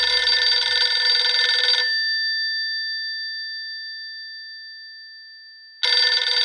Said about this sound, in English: Must be running pretty quickly to get to this phone. Okay, next ring's got it.